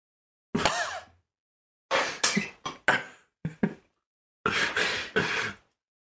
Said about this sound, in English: Maybe that's what they want to hear from us, just us coughing. It's like an ASMR podcast.